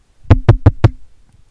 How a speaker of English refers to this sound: That's when the door to the TARDIS is knocked on 4 times each.